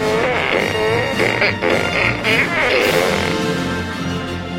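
A loud, continuous run of buzzy, pitched fart sounds plays a march-like melody, one blaring note after another for several seconds, with no talking.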